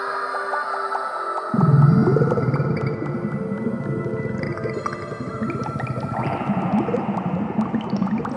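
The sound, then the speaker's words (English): Underwater calls of a heliotonic golden dolphin sing out in sustained, wavering tones, joined after a moment by a steady low bubbling rumble that continues beneath them throughout. “That, my friend, is a heliotonic golden dolphin. It's one of the most beautiful sounds in the ocean.”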